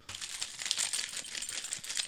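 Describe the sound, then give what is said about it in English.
Car keys jingle for a couple of seconds, a steady bright metallic clinking and rattling with no one speaking. “You know where your car keys are, though, right?”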